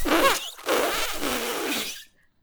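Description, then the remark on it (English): A voice tries to imitate an elephant's trumpet, but it comes out as a harsh, breathy rasp in two loud bursts, a short one then a longer strained one, before falling silent. “I was trying to do an elephant sound.”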